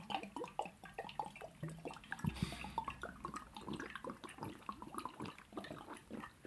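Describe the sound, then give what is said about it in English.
Steady gulping of water, a rapid run of wet swallows and glugs lasting several seconds with no talking, as someone chugs water from a bottle without pausing. “You got Niagara Falls in that bottle?”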